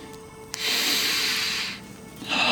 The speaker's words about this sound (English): As I stand here in these woods, alone, in the night, I take a calming breath.